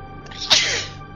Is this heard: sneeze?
yes